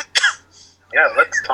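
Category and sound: human body sound, cough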